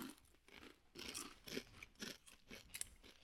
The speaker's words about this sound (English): It's like a really, really, really crunchy hot Cheeto. Woo! With lime. There's lime at the end.